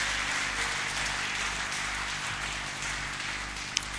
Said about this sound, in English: If you want to clap for the Lord, go ahead and clap for the Lord.